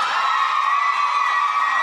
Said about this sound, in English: So, for a round of applause, who wants Bachelorette number one?